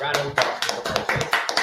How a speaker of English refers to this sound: Round of applause for Jamar Chase.